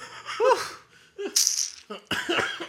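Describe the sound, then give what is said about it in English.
A few harsh coughs in separate bursts, with a strained, throaty, laugh-like sound at the start and a rattly run of coughing at the end. No one speaks. “Man, yo, you still fighting this cough?”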